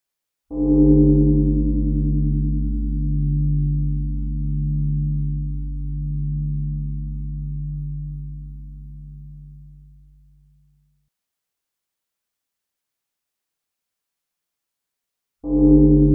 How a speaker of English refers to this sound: Before we begin, let's take a moment and listen to the sound of the bell 3 times. Just relax and enjoy, and let the waves of sound wash over you.